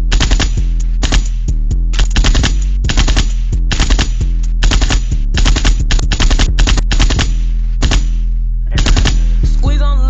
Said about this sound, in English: She definitely get the gunshots.